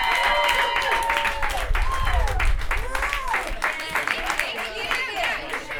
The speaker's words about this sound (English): But they're here for you right now. Give a round of applause for the hilarious Potter Bra Sisters!